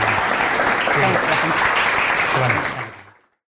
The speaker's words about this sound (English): Thank you so much. Round of applause. Thank you.